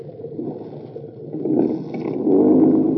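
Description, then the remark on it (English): A low, rumbling motorboat engine starts and runs steadily as the boat backs off and heads for shore, its droning growl stepping up louder twice as the throttle opens, with a faint watery hiss on top and no voices. “Now start your motor, back off a little bit, and head for shore.”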